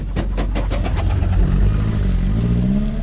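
A car engine revs loudly, its low growl climbing steadily in pitch over a few seconds, with rapid pulsing at the start and no voices.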